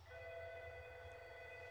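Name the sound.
alarm ringing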